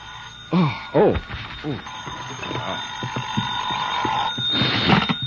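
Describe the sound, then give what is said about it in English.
A telephone bell rings in the morning in loud bursts, the jangling rings repeating over a steady background tone, with a final ring near the end. “I guess I was still thinking or dreaming about it when my phone rang the next morning.”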